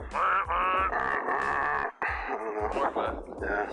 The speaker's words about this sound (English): Alright, how's that bus horn sound?